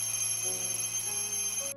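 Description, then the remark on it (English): An oven timer alarm rings in a kitchen, continuously with steady electronic tones that shift pitch in short steps, clear, with no talking over it. “The oven alarm rings.”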